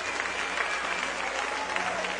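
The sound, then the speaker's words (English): An audience claps hands in a steady, dense wash of applause, loud and continuous throughout, with a faint murmur of voices mixed underneath. “If you believe that one more time, would you clap your hands and would you give God a great praise?”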